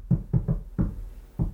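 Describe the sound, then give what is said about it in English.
A relaxed, friendly knock on a door by people carrying out a raid: three quick raps, a short pause, then two more spaced-out knocks, fairly loud, with no one speaking. “Because when I got raided, they were knocking on the door like a homie knock.”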